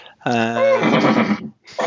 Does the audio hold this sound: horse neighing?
yes